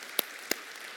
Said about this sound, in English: We can clap. It's good. It's good.